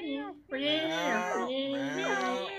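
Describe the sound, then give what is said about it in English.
A crowd of cats meowing at once as they come up from under the decks, overlapping wavering cries that rise and fall continuously, loud, with no pause for nearly three seconds. “Just then, an army of cats comes up from under decks.”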